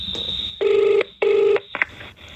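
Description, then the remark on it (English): A telephone line rings through the earpiece, two steady buzzing ring tones in quick succession, preceded and followed by brief electronic beeps and line noise. No one speaks. “I can call up the people anyway, and we'll just see how much it would be.”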